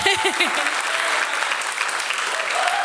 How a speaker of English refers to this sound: Yeah, you can give her a round of applause.